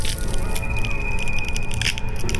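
A dense, continuous crunching and crackling that stays loud for about two seconds, with a thin, steady high whine running through much of it. No one speaks.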